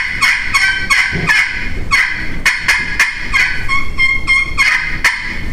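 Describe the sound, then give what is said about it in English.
A friction turkey call worked with short strokes produces a steady run of hen yelps, raspy and high-pitched, repeated in quick even loud bursts, with no talking. “A hen yelp is about as quick as you can draw the size of a dime is about what a hen yelp is.”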